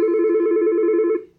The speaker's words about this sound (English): We're just going to ignore the phone and keep on going.